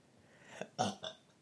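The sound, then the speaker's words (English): A short burp erupts in a couple of quick voiced pulses, loud against a quiet background, with no talking. “Maybe you'll burp. Excuse me.”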